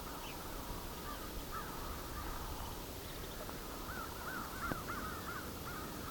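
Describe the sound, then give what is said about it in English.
A flock of about 70 crows caws continuously nearby, many overlapping calls blending into a steady chorus over a soft, constant outdoor hiss, with no voices present. “There's a flock of, I don't know, 70 or so crows nearby here too.”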